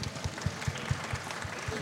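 A crowd applauds with a dense, steady wash of clapping, and a regular low thumping beat pulses underneath roughly four times a second. No one speaks.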